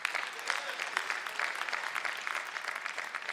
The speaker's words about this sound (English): This room, the side of the room is clapping. Let me just continue.